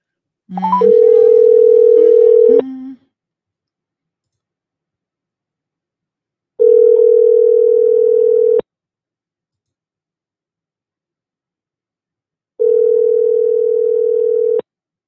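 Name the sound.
telephone call ringing through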